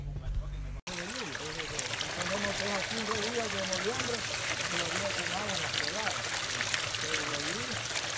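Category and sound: nature, gently flowing water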